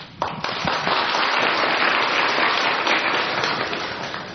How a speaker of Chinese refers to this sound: 我们现在鼓掌。